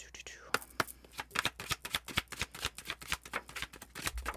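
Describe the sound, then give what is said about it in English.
Tarot cards are shuffled for a collective reading in a fast, continuous flurry of crisp, papery flicks and snaps lasting several seconds, with a soft breathy texture underneath and no clear speech. “Okay, and we are going to reset that energy and we are going to push forward to the collective reading. Shuffle, shuffle, shuffle.”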